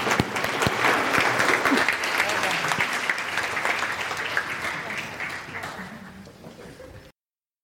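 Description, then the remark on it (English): A church audience breaks into a sustained round of applause, dense and loud at first, then gradually thinning and fading before cutting off after about seven seconds, with a few voices mixed in. “Let's all give a round of applause and hug somebody.”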